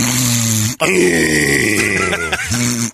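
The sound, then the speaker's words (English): A voice imitates a woman's loud snoring, likened to a chainsaw: a harsh, rattling, grunting drone broken into three long pushes with brief gaps, rough and throaty throughout. “She's like a chainsaw.”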